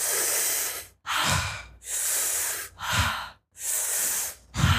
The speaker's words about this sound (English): So you're there aware of your feet. So in 3, 2, 1, exhale, looking intently at the small dot and breathing in.